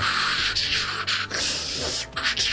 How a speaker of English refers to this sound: A crackling ripples through your speakers.